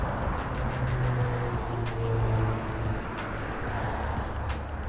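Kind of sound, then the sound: vehicle, street traffic passing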